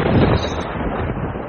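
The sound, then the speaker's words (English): A loud, heavy crack of thunder directly overhead rolls into a deep, sustained rumble that fills the whole clip, dense in the low end, with no voices. “The thunder is directly above the house or the store that you've taken refuge in.”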